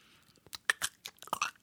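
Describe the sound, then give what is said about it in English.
A voice mimics eyelids blinking with a quick run of wet, clicky mouth smacks, about eight short bursts in irregular rhythm, fairly quiet with faint breathy hiss at the start. “That's the sound of his eyelids opening and closing.”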